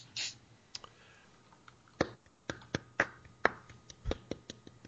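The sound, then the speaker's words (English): Sparse, uneven hand claps from just a few people, a dozen or so sharp slaps at irregular intervals, quiet, with no voices. “That was the worst applause I've ever heard.”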